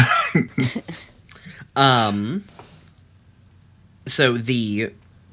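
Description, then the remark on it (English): A person coughs several times: a quick cluster of short, dry bursts, then two louder, drawn-out voiced coughs separated by a brief pause. “Jeez, I keep coughing.”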